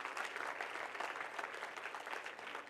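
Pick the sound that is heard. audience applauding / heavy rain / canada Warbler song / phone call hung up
audience applauding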